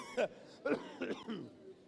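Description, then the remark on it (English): A short run of four rough, throaty coughs, moderately loud, coming in quick uneven bursts with brief gaps between them. “I don't like you to make me cough.”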